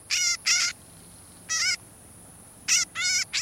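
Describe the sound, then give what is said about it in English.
A northern shrike gives harsh, nasal, buzzy calls in short bursts, a pair, then a single, then a quick cluster, clear against a quiet background with no talking. “The northern shrike breeds in the tundra and taiga of the north, but migrates south for the winter”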